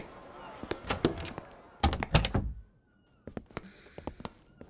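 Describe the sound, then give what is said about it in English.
A door beneath a ship's quarterdeck, leading to the captain's quarters, is opened and shut, with a heavy wooden thunk and a few rattling knocks, followed by softer latch clicks and small taps as it settles. “Unsure of what awaits you, you drop the wooden sword and follow the captain through the door beneath the quarterdeck.”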